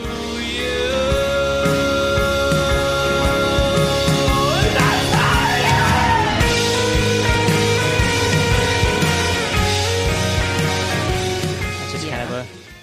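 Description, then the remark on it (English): At the end of a song, after its ending line, a male singer yells hoarsely over loud, dense rock music, the strained voice rising in bursts above pounding drums and distorted guitars before the whole band cuts off near the end. “Just like the ending line of like, your plot gets covered up by someone who never knows you, and then he yells, and that's how it ends.”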